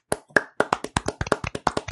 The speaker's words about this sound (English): Actually, everyone, let's clap for him.